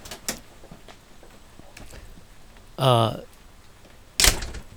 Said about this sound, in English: But it's reached the point where I have camped so long and really just opening this door, even though it's raining.